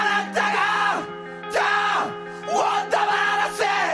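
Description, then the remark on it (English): Loud rock music with harsh, screamed vocals in arching phrases over sustained distorted guitar chords and punchy drum hits, all driving steadily. “if you took away the kind of screaming quality of the singing, this melody and guitar part could totally be on …”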